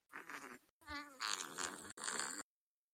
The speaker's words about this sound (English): I just want to let it out sometimes. I just want to let it out. Please don't. My fart app. There we go. I just need to let it out, bro.